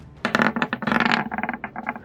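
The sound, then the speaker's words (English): Dice are rerolled during a tabletop role-playing game, clattering across a hard tabletop in a burst of quick, sharp rattling taps, busiest at first and then breaking into smaller scattered clicks as they settle. No one speaks. “Oh, I rolled better, but it's not great.”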